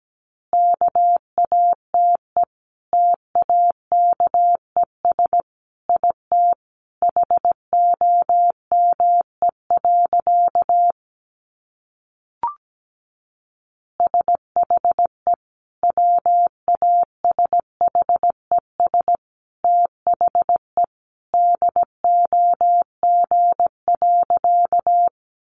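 Morse code sent at 17 words per minute, tapped out as a steady, medium-high electronic beep in quick dots and dashes, sent in word-like groups, with a brief pause and a lone click midway. No voices.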